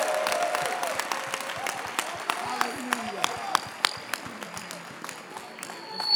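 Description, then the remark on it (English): An audience claps for Jesus in scattered, sharp bursts that gradually build into irregular applause, with voices calling and murmuring underneath throughout. “Clap for Jesus.”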